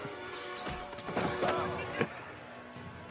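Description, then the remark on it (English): Plate glass in a restaurant shatters as someone runs through it, in a burst of sharp crashes, with bright ringing shards and a few scattered impacts following over a couple of seconds, moderately loud. “Let's run through some glass. Why is this glass here? No idea. It's just some plate glass.”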